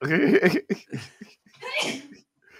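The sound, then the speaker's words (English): A person sneezes, a sharp breathy burst following a few short voiced sounds and gasps, with a brief pause before a softer trailing noise. “Bless you, …. Sneezing,”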